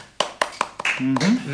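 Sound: audience applause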